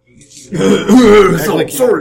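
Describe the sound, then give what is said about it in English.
A loud bout of throat clearing with rough, gravelly coughing, lasting about a second and a half after a brief quiet start, with no words spoken. “Well, you could just cough a lot and...”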